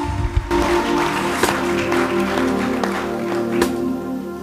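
An audience breaks into sustained, enthusiastic clapping as a clap offering to celebrate God, filling the room, with a steady hum of sustained keyboard or organ tones underneath.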